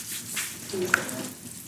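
Food sizzling in hot Crisco shortening, a steady crackling hiss with one sharp pop partway through, fairly quiet, with no talking.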